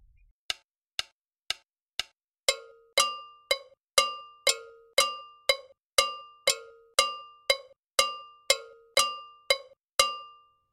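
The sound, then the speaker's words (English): Two bell parts, the timeline bell and the complementing gonkogui, interlock in a steady rhythm of sharp metallic strikes, a lighter clinking pattern at first, then a fuller, lower ringing bell joining in and alternating with it. No one speaks. “Listen to the two bell parts together.”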